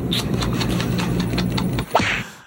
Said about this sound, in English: Oh, such a great movie, dude. Love how fucking terrible the slap sound is.